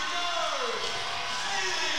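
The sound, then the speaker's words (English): A large basketball crowd at a women's game roars and cheers continuously during pregame player introductions of the seniors, a dense, steady wall of voices and shouts that stays loud for the whole two seconds without letting up. “And this crowd, as you can certainly hear on our crowd mics, just loving it.”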